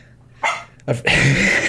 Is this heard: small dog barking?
yes